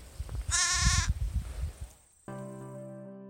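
A lamb lets out a single quavering bleat, fairly loud, over a low rumbling background, followed by a steady sustained tone.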